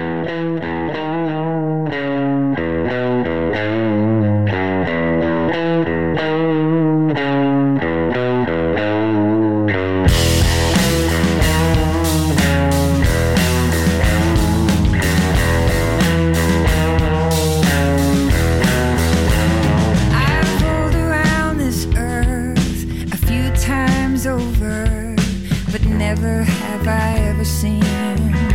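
A rock song from a brand new record plays loudly on X-Ray FM radio, opening with a clean, rhythmic guitar riff before full band with distorted guitars, bass and drums crashes in around ten seconds and drives on steadily.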